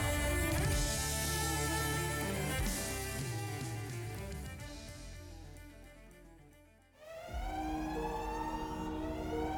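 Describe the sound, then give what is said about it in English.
The Aphanim's alarm in a library blares with dense, harsh wailing tones that dip briefly near the end, then resume as a rising, siren-like sweep. No voices are heard. “As the Aphanim's alarm ringing wanes, as order resumes in the library”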